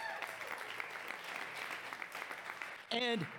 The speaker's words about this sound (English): And man, applaud him, because he did tremendous with that.